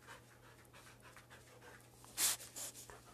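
dog panting nearby

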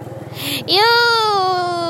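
cat meowing

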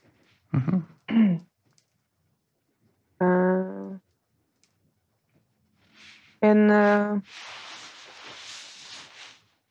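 coughing and throat clearing

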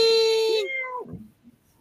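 cat meowing

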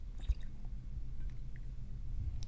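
sipping a drink

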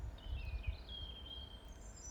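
birds singing outdoors

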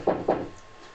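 knocking

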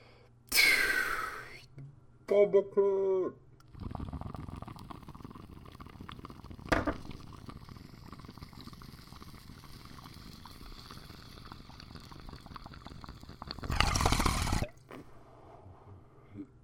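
water bong bubbling

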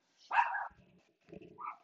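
dogs barking

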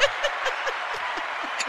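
applause sound effect

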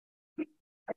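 sneeze

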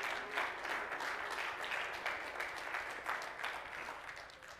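audience clapping hands

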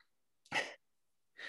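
sneeze

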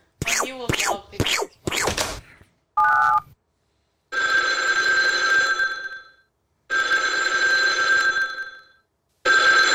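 telephone ringing

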